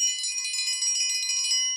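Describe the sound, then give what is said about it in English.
A dinner bell sound effect from a voice assistant's announcement feature: a small handbell rings rapidly and continuously for about two seconds, a bright, metallic jangling with sustained high overtones, fairly loud, then stops abruptly. “That was dinner bell.”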